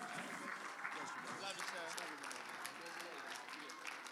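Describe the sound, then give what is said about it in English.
A crowd claps steadily in a dense, sustained wash of applause, with voices calling out and talking underneath throughout. “Come on, put those hands together.”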